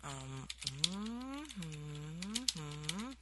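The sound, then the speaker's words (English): Quick, light keyboard clicks patter as letters are typed, partly covered by a steady humming voice that slides up and down in pitch in three long phrases. “I'm listening to where you're typing.”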